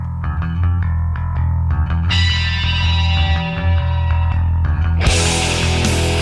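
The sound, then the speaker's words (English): Loud, dense heavy rock music from 1993 with a thick distorted guitar riff over pounding low end, building as crashing cymbals surge in twice; no voices are heard. “What was the single? …. I used to play this on my metal show.”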